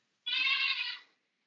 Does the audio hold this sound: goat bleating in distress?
yes